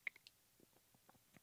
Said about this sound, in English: You know, when you're swallowing your spit, I know this microphone can pick that up. And I know you don't want to fucking hear that.